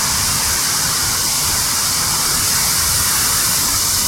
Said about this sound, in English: We're just about to crush this waterfall. So, hear that, keep that. Nice. Sounds fantastic. Love running water.